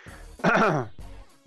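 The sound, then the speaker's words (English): A single harsh, strained throat-clearing burst with a gagging edge, fairly loud, picked up by a gaming headset microphone, followed by a softer rasp and quiet breathing. “Sorry, no cough mic on the gaming headset. Good thing I'm gagging.”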